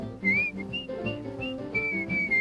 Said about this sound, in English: whistle while you work.